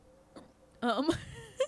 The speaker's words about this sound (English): Oh my God, guys, I have the hiccups. This is going to be a terrible listening experience.